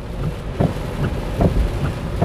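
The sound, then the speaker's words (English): Heavy rain pours down in Florida in a steady, dense hiss over a low, rumbling wind noise, with a couple of brief louder surges along the way. No one speaks. “Holy Lord, this is bad. I have not seen rain like this in a long time.”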